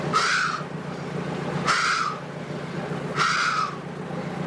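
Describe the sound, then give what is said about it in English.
Three harsh, raspy calls, evenly spaced about a second and a half apart, imitating the breathing heard from Nessie, the Loch Ness creature, said to sound like the heavy, wheezing breaths of a horse that has been running. Loud and alone over a low rumbling background. “And it was fantastic itself, that, because it was sounded exactly like a horse that had been running, and it was sounded like this.”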